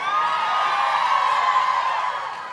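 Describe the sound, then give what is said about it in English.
A live audience in Austin, Texas cheers and whoops loudly and steadily, a dense wash of voices with no individual words standing out, easing off slightly at the very end. “What a crowd.”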